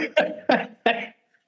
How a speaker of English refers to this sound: She's over there laughing, but she has a cough, so I can hear that it's going to get her coughing.